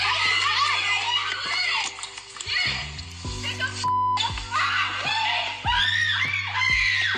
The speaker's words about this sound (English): They saw her screaming when she got stabbed. When she got, check this out. They started screaming when she got stabbed.